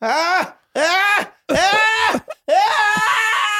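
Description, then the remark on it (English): A voice imitates the moaning noises a man made during sex, with four drawn-out, wavering groans, the pitch sliding up and then sagging down, each loud and separated by brief pauses, with the last one stretching longer. “I mean, I heard him fuck a couple times. He made noises.”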